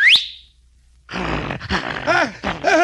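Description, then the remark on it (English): A single sharp, shrill whistle from a friar calling his dog sweeps quickly upward, loud. After a brief silence, harsh growling and snarling from the dog seizing a sheriff follow and continue to the end. “Seeing what was happening, he gave a shrill whistle to his dog.”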